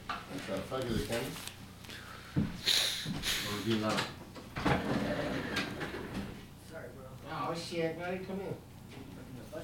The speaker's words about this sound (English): Somebody knocking?